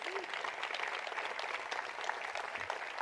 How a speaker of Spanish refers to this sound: Un aplauso para nuestros soldados, por favor, familia.